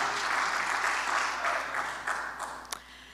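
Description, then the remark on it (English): A church audience bursts into steady applause, dense overlapping claps holding loud and even before thinning slightly toward the end, with a few sharper individual claps standing out near the close. “Wow, that's worth like a hand clap or a yay or a something.”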